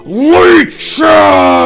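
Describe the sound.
A voice imitates a werewolf howling and roaring at the moon, letting out a rising and falling howl, a brief pause, then a long sustained roar-like bellow, loud and harmonically rich.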